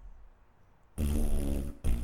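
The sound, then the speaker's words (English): After a second of quiet, a loud, buzzy fart blares for almost a second, breaks off briefly, then a second burst starts right after. “We're going to leave you with an uh-oh fart and tell you to go fuck yourself.”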